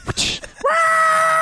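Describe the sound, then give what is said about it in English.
A person imitates a reindeer's scream: a few short breathy sounds, then a loud, sustained, high-pitched shriek held steady to the end, alone. “Off the back of the reindeer. And they would scream.”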